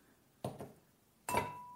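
Glasses clink together three times in a toast, two light taps close together and then a louder strike that leaves a short, clear ringing tone, with no talking.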